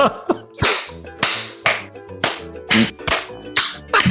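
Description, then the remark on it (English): A dozen or so sharp, crisp hand claps land in a loose, uneven rhythm over a steady low tonal hum, with no voices. “Do you guys know if this clapping actually helps anybody?”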